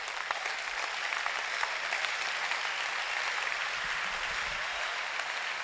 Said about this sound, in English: It's a good place for you to clap your hands.